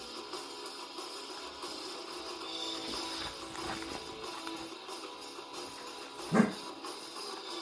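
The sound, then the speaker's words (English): The speaker's dog gives one short, sharp bark near the end, distinct above a steady low background hiss, with no one talking. “My dog says hello. He's barking.”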